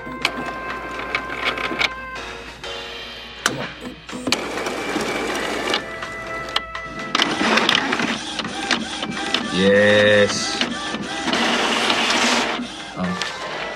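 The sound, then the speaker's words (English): A newly set-up printer whirs and clatters as it feeds and prints a page, with mechanical buzzing, clicks and a rising motor tone near the end; a voice briefly speaks. “Congratulations, you have finished setting up your printer.”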